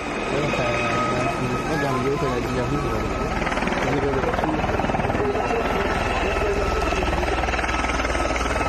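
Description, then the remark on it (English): A helicopter roars, its rotor thumping in a steady rapid chop beneath a dense engine whine, loud and continuous throughout as it comes in to land at a funeral in Belgium. “They're like, "Why is a helicopter landing at this funeral?"”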